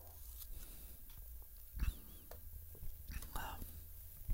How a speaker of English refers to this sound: Oh, talking about water. Man, I'm just going to take another little sip right now. Maybe you can take a sip of water right now as well.